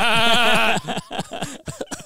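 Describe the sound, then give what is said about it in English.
A person imitates a goat with one loud, quavering bleat lasting under a second, followed straight away by talking. “That's a sheep. What's a goat sound? Bah, bah.”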